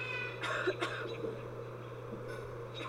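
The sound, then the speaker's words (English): A raven imitates a human cough, two short raspy bursts in quick succession, fairly loud, followed by a faint breathy sound over a steady low hum. “It coughed.”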